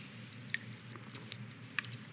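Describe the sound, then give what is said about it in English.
Someone drinking water: a few soft, wet swallowing clicks spaced irregularly over a low, steady background hum, with no talking. “I'm gonna take a drink.”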